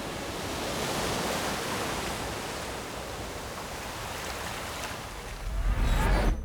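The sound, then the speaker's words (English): Ocean waves wash in a steady, broad rush of surf, continuous and fairly loud, with a deeper surge swelling near the end. No voices, just the sea. “Sometimes it's the sound of an ocean wave.”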